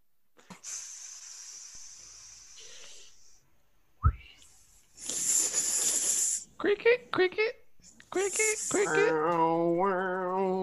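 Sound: snakes hissing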